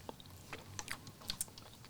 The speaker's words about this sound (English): Okay, wait, hold on, pause. Let me sip some of this.